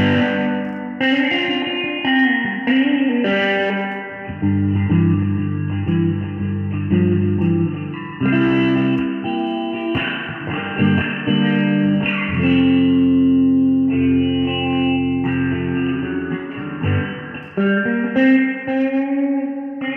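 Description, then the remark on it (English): A clean electric guitar, played on its middle pickup, plays a steady sequence of chords and single notes for about twenty seconds, moderately loud, with a rounded, slightly hollow tone and a touch of reverb; no voices. “That was all in bridge position. Let's do the middle with this.”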